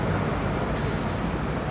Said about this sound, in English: And by the way, we saw Queen Consort Camilla just exiting by vehicle now, and Kate as well.